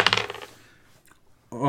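A quick burst of hard clattering rattles, like dice tumbling across a table, quickly dying away into near silence before a voice begins speaking at the end.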